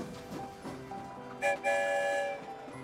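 A train rumbles steadily along through the Rainbow Tunnel, then a loud, sustained whistle sounds twice near the end, ringing out over the rolling clatter with no voices.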